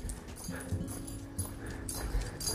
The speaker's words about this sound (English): That's not wildlife, that's domestic life. That's the big German Shepherd who dominates this part of the mountain with his bark.